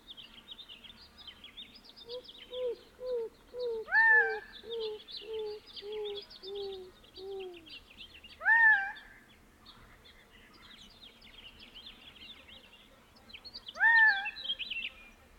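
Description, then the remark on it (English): A greater roadrunner gives a slow series of about eight mournful coos, each stepping lower in pitch, moderately soft amid constant high bird chatter and three louder, sharper calls from another bird. “In this recording, a greater roadrunner can be heard singing in the background, its mournful coos sliding downward in pitch.”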